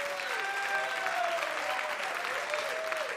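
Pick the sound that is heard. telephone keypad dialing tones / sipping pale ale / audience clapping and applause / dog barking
audience clapping and applause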